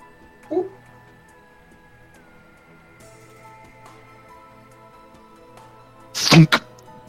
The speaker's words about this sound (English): What did that just hit? Did that hit a tree? Well, that was more the thwunk of the arrow sailing off into the darkness, and then you hear a very quiet sound.